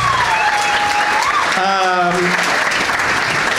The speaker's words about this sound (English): One more round of applause for all three of my guests.